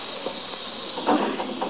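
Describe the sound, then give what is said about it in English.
A steady, even hiss of gas that someone has turned on, escaping from a pipe, broad and continuous, with a few faint knocks and clicks rising briefly over it. “You hear that? It's the gas. Someone's turned on the gas.”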